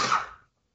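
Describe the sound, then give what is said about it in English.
A single sharp sneeze, a quick breathy burst that fades out in under half a second, followed by silence. “Bless you.”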